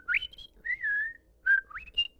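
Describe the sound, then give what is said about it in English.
A person whistles a short birdlike phrase imitating finch song: quick rising chirps, a wavering sustained note, then a sliding upward call and a final bright chirp, moderately loud with no talking. “I mean, wow, you've spoken Finch your whole life.”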